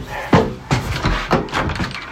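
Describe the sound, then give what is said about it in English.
The front door at Erskine Court being opened to let arriving guests in: a sharp latch clunk, then a few muffled thumps and rattles spread over about two seconds, moderately loud with no clear talking. “You coming to answer the door with me?”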